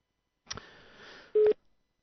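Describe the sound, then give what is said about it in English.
A faint crackle of line hiss gives way to a single short, loud, steady electronic tone, the first burst of a non-Australian telephone ringtone heard through the receiver after dialling a local number that is diverted internationally. “International diversion on a local number. Because that's not an Australian ringtone.”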